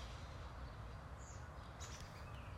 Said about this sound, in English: I'm like outside right now and it's like the birds are chirping and I'm like getting distracted because I think I'm seeing a blue jay right now.